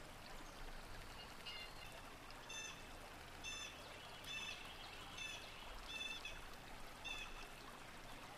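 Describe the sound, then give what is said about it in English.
Short, bright bird chirping calls repeat every second or so over a steady, rushing background like flowing water, with no voices; the chirps are fairly faint and sound outdoors. “Let's just listen to these birds for a second.”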